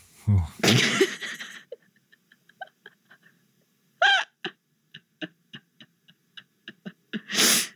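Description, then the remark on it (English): A few harsh, breathy coughing bursts, exaggerated and put on, separated by a string of short clicking, hiccup-like vocal pops, ending with one more forceful cough. “When I was doing that fake coughing bit. It was one real cough followed by like, let's do a thing with this.”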